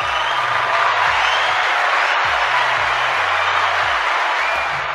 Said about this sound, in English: All those applause for Haiti.